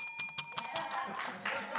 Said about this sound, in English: And by the way, that is the bell, like the actual this is, bell and we're gonna from do, the show.